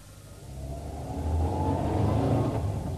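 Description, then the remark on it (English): A duty car's engine revs, its low rumble swelling louder as it accelerates, with no voices over it. “I've got the duty car out front, sir.”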